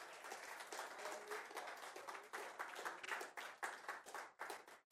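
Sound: audience clapping hands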